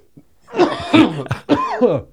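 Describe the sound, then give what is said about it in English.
Raspy coughing and throat clearing in a few rough bursts, with a strained, voiced quality as someone hacks after smoking cannabis from a pipe. “I'm gonna smoke weed on air. On air. Out of my Doug Taco piece.”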